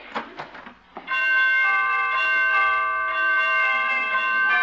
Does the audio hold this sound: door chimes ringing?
yes